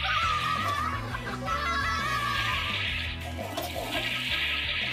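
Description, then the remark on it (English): A toy toilet from the Toilet Trouble game flushes in a game commercial, gurgling and rushing for several seconds over upbeat background music, with faint giggling mixed in. “Fill the water, spin the roll, and see how many times you should flush.”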